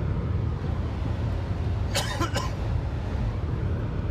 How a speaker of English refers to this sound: Got a tickle on my throat today. I'm going to try not to cough into them. My mic here.